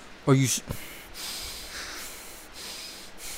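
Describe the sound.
A voice imitates a loud, forceful snort, followed by several seconds of heavy, audible breathing through the nose, like someone huffing in anger.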